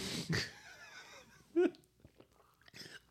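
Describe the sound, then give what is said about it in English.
Someone chokes and wheezes after a sip of beer: a sharp sputtering burst, strained raspy breaths, then another harsh gasp, with a few weaker wheezy breaths trailing off. “Are you okay? Do you need the Heinelick maneuver?”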